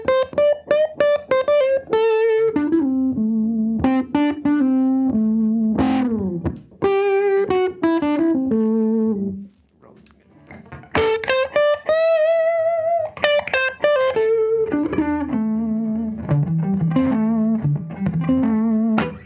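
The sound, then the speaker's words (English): An electric guitar plays a melodic lead line twice, first on the lead pickup with a bright, cutting tone and then on the bass pickup with a warmer, rounder one, each phrase sustained and clearly articulated with no voices. “I mean, the lead pickup, the bass pickup, folks.”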